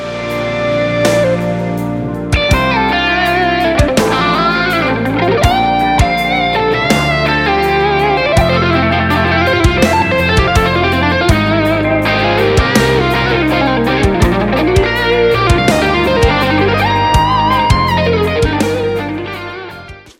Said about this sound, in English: Very open jazz style, halftime on the drums and bass, comping underneath.